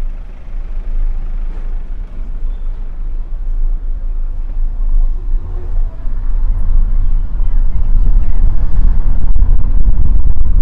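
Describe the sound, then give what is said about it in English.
Steady low rumble of city traffic heard from inside a taxi moving through a city square, with engine drone and passing vehicles building louder toward the end, and faint indistinct voices in the background. “Traveling through the city square.”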